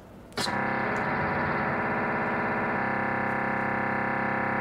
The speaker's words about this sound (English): There you can see some data right there before it went back to an idle. So what we have is many frequencies here, multiple frequency shift keying on steroids, right?